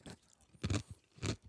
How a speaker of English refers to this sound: As you take a big crunchy fucking chew of something. Beautiful. ASMR.